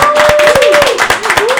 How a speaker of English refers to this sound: So please welcome tonight to the show. Everybody's got to clap because we don't have any fucking drops because Khan's not here.